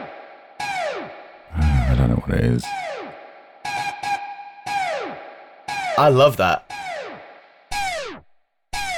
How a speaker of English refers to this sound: Yeah, there's also a really funny thing that sounds like a bird. I don't know what it is. It's a guitar.